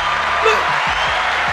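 crowd, applause

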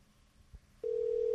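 signal or alarm, telephone ringback tone

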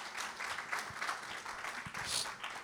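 crowd, audience applause

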